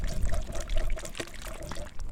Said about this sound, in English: So how do we get them from the sieve? So what I'm doing now is just using a squirt bottle and kind of rinsing the sides of the sieve into with a funnel and pouring it into a little vial.